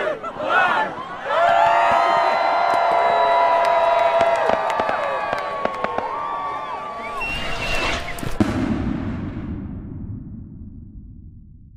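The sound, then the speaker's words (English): A New Year's Eve crowd looking out over the city from Hampstead Heath counts down, then cheers and whoops loudly as fireworks light up the sky, with scattered sharp firework bangs and crackles cutting through; the cheering gives way to a lower murmur and rumble near the end. “the ones in the know gather to look out over the city and watch fireworks light up the sky for miles around.”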